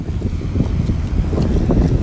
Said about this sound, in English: That's cool. A low flying plane. That's like a low. It's kind of like one of those Indiana Jones planes, like an Indiana Jones when he's flying around.